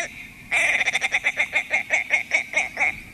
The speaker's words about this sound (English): But the male is another story. Picture those white wings propelling that chunky, rusty body in a long arc over the tundra as he chuckles his way across the tops of the willows.